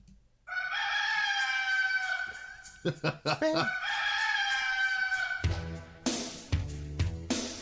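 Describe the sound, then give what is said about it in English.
Two long, loud rooster crows ring out back to back, separated by a short burst of choppy sounds, before a booming wrestling entrance theme kicks in with heavy bass. “I was going to save that for like the worst theme music bonus episode.”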